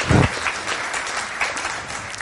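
A crowd breaks into applause, a dense, steady patter of many hands clapping that holds at an even level, opening with a brief low thump.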